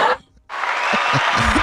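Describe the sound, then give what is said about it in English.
An applause sound effect played by pressing a button: a short burst of noise, a brief silence, then a dense wash of clapping applause that starts abruptly and holds steady and loud, with a few low voiced whoops mixed in. “Press the round of applause for my boy.”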